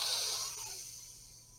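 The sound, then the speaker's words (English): A single deep reflexive breath drawn in after a full exhale and hold during box breathing, a soft airy hiss that swells at the start and slowly tapers off over a second and a half, with no talking. “Exhale until you can't exhale anymore. Get all that air out of your lungs. Hold it.”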